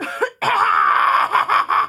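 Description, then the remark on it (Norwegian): A loud cough: a brief rasp, then a long harsh hacking burst that breaks into a few more pulses near the end, with no talking; a lingering dry cough from a COVID-19 infection almost a year earlier. “Nei, men du, jeg skal bare hoste et sekund.”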